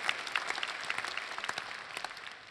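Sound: audience clapping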